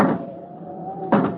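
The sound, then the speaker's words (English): A door swings open with a drawn-out, wavering creak, followed by a sudden burst of rushing noise near the end. Fairly loud, with no voices. “Close that door before we get blown out of here.”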